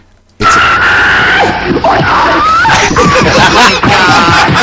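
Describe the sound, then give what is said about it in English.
A man's voice imitates the loud, drawn-out scream of a man being dragged off an airplane, shrill and wavering, rising and breaking over several seconds, with a bit of laughter or chatter mixed in. “And the scream that he let out is like...”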